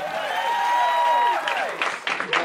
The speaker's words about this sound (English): Here it is. Here's some laughs. Here's some claps.